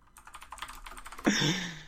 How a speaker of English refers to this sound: Furious typing. No, I'm looking up pictures of Poison Ivy for supplementary material for this Good. podcast.